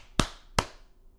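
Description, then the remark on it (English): Two sharp hand claps, a fraction of a second apart, each a bright, crisp smack with a quick fading tail. No one speaks. “I'm gonna actually clap for that.”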